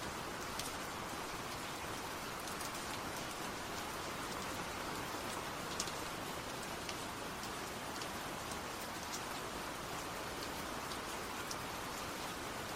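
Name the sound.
rain falling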